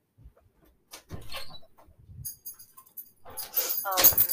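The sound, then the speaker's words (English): A dog shuffles and moves around, with scattered rustling, thumps and a bright jingling like a collar tag, growing louder and busier toward the end. “Oh my God, my dog!”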